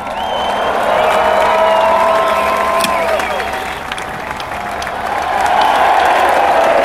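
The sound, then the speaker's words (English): A crowd of about 5,000 people cheers and applauds Sam Bird as he raises his winner's trophy, presented by Princess Beatrice and Sarah, Duchess of York; a dense wash of clapping and shouts that swells, dips briefly midway, then rises again, with scattered whistles and whoops. “Huge cheer for Sam Bird as he accepts kisses from those royalty types and raises his trophy.”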